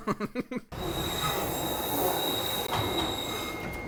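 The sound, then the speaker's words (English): After a brief burst of voices, a Docklands Light Railway train in London takes over with loud, sustained high-pitched wheel squeal and steady rumbling, continuous for several seconds. “They go to a body of water and there's a cameo from the Docklands Light Railway.”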